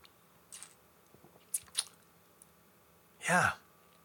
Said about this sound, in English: This is definitely showing a little bit of warmth. It's very interesting. Let me have another sip.